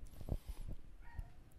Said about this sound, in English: I can hear dogs barking upstairs. Did you hear that? I did. I heard that.